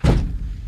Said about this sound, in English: I just hit my ankle on the chair. It's, that's okay.